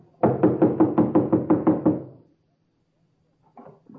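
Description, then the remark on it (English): Police knocking rapidly and forcefully on a door, about nine heavy blows in a steady rhythm lasting two seconds, then silence before a brief voice starts speaking faintly. “Knocking and banging, banging and knocking.”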